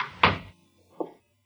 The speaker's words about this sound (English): Close the door.